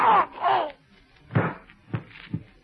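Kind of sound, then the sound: sound effect, gunshot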